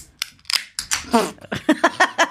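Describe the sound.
A couple of cans of fruit beer (gooseberry, pineapple and mango) are opened at the same time, cracking open with sharp pops and a brief fizzing hiss, followed by a voice and a quick series of short clicking bursts.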